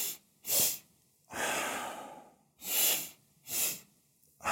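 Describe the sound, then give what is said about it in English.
Audible breathing with no talking, demonstrating a physiological sigh to reduce stress: two inhales through the nose, one long and one quick and shorter, then a long, deep, airy exhale through the mouth, repeated in a steady rhythm. “Now, to do it, all you need to do is inhale twice through the nose, one long inhale followed by a quick, shorter one, and then exhale deeply through the mouth.”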